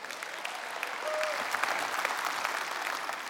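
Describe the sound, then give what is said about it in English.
An audience applauds in a steady, dense patter of many hands clapping at moderate volume, sustained for a few seconds with a brief faint high tone near the start and no voices. “Not worth clapping for.”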